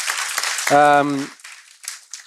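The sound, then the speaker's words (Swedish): A short burst of audience applause, crackly, for an app having reached 1.8 million Chinese women, with a voice briefly calling out over the clapping before it thins out and fades. “En liten applåd för det.”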